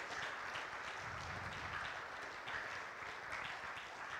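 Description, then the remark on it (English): Sustained applause from a large crowd, dense steady clapping at an even level throughout with no speech over it, thanking a man for his years of serving in youth and sound ministry. “let's give this guy a thanks with your applause just for all that he's done serving over the years.”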